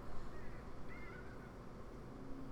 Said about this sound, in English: Can you guys hear that bird? There's, like, just this bird, too. I don't even know what kind of bird it is, but it's got the worst voice.